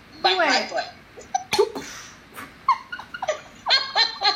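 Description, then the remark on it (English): A person mimics a dog's yelp with a string of short, high-pitched, whiny vocal bursts, fairly loud, bunched at the start and end with brief gaps between them. “I got attacked by her dog. My dog said, yo, whoop. Actually, it backfired on him. I know, he went.”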